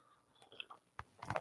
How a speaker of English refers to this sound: I've got my coffee here. I'm going to take a sip.